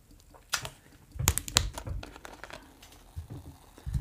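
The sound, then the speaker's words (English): Dr Pepper Zero Sugar soda poured into a cup in a few short, irregular splashes, with a crackly fizz between them. Fairly quiet, with no talking. “Another little pour.”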